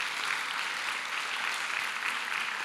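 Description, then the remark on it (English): A crowd at a baptism service claps softly and without much energy, a thin, steady patter of scattered hands that holds at the same low level throughout, with no voices over it. “That is the worst clap I've ever.”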